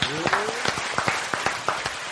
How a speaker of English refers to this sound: Getting better at this applause. You getting good with it.